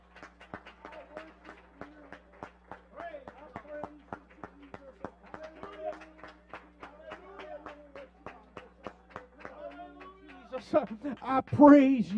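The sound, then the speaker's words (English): A church audience claps their hands in worship in a steady, quick rhythm for about ten seconds while voices hum and sing underneath; near the end, a louder, swooping voice rises over the clapping. “Would you worship him one more time? Just clap your hands.”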